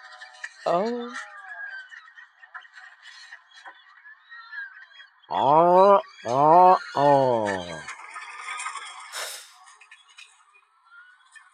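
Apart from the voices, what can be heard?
bird calling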